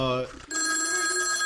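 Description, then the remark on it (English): A brief voice gives way to a telephone ringing with an incoming call: a loud, steady electronic trill of layered tones that continues unbroken to the end. “Setting that precedent, let's move forward and answer this call.”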